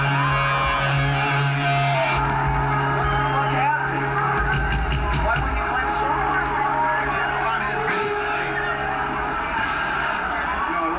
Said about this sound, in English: I was getting booed.